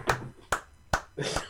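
A few soft, slow hand claps, three crisp ones spaced evenly and a fourth slightly longer and smeared, polite and unenthusiastic like a quiet golf clap.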